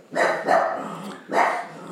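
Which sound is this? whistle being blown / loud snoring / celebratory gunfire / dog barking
dog barking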